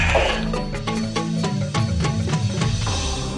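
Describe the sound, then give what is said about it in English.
A Shetland sheep bleats loudly in one long, wavering call that keeps a steady buzzing tremble for several seconds, with no one speaking. “Currently, there are about 2,500 Shetland sheep being raised in the United States.”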